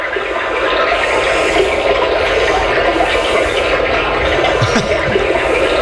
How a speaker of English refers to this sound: Now, this is my personal favorite, and warning, if you're driving your car, you might want to pull over because this could put you to sleep. This is a brook, a little bit of water.